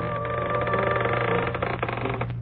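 A creaking door sound effect made by a sound effects man as a demonstration for mystery radio programs: a continuous, buzzy groan with a steady low hum and a few rougher grating bursts partway through. It stays fairly loud for about two and a half seconds, with no talking.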